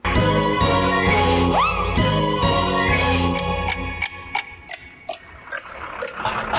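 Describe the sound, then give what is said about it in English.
A bright, jingling tonal passage with a sliding pitch swoop gives way to a clock's crisp, evenly spaced ticks, clear, continuing alone for the last few seconds with no voices. “Boy, this looks so bad, even the clock slowed down.”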